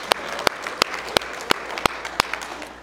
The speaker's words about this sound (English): Come on and give Him another hand clap if you wouldn't mind, please.